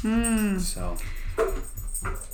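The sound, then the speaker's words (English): A female dog that has brought a tennis ball over whimpers and yips, a long high whine followed by several short, sharp yelps in an uneven rhythm, with faint room noise underneath. “The dog really wants to help out.”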